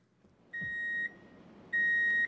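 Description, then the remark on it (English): Two long, steady electronic beeps at a single high pitch, each lasting about half a second with a pause between, the repeating warning tone of a reversing delivery truck bringing more rice, over faint background noise. “I think I hear the truck backing up right now.”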